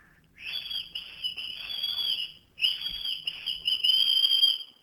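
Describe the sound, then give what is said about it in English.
A person whistles one steady, high note, holding it for a couple of seconds, pausing briefly, then holding it again. The whistle is loud, with no talking. “Okay, you need to whistle.”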